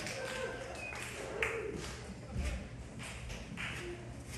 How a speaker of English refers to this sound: You guys procrastinated on that clap a little bit.